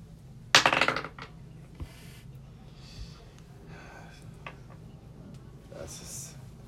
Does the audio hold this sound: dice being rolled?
yes